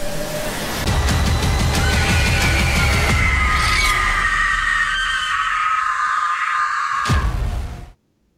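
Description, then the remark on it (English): A long, piercing scream held for several seconds over a noisy, rumbling background, steady and loud before cutting off abruptly near the end. “I didn't want to cut off any of that kick-ass scream at the end. It was a great scream.”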